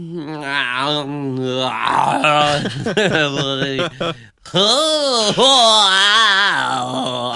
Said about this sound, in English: take this yawn out of the way, man.